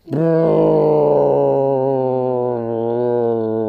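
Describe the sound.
A voice imitates an airplane with a loud, steady, low droning hum held for about four seconds, its pitch barely wavering before it eases off slightly toward the end.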